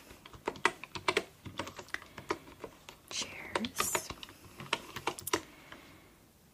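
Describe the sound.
Rapid, uneven keystrokes clatter on a wooden keyboard, sharp bright clicks in bursts, while a soft voice speaks over the typing during an ASMR interior design consultation role-play.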